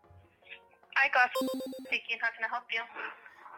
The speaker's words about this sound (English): Let's go ahead and call. I know it's not my phone because I can hear these tones. There we go. Got a nice ringtone there.